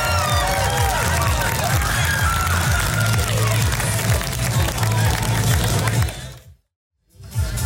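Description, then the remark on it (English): At a barbecue competition awards, a group of grown men from the team Cereal Grillers cheer and scream loudly and continuously as they are announced first place for brisket, voices overlapping with thumping underneath; the roar cuts out abruptly, then briefly starts again. “Get ready to hear some grown men scream.”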